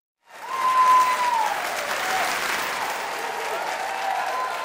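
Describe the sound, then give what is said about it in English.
A sold-out crowd in a famous hall bursts into loud, sustained applause that holds steady throughout, with a sharp whistle rising briefly above the clapping near the start. “Do you hear that? It is a sold-out crowd here in this wild, beautiful, famous hall.”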